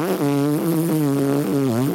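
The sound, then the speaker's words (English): A loud, sustained mouth-made fart noise, a buzzy lip raspberry lasting about two seconds with a wavering, sputtering pitch, with no talking over it. “Don't hashtag fart noise.”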